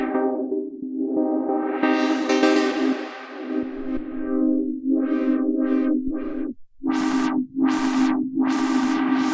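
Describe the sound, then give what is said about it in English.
A sustained synthesizer tone with heavy reverb is swept by the synthesizer's onboard master filter, opening and closing slowly at first, then in quicker, brighter sweeps, with a strong, wet sound and no voices. “They have a very nice onboard master filter.”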